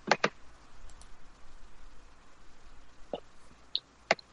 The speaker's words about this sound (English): What team was he with then? Was it Milton? I'm clicking here. We'll find out.